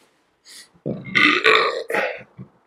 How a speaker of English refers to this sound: Sorry about the burp. I'm sorry.